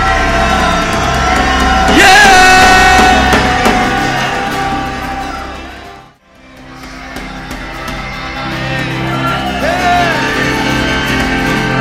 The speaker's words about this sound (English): So let's one more time. Let's one more time. Let's shout until we're not uncomfortable shouting anymore. Yes! Come on!